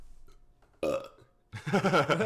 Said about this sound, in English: I can burp on command. You ready?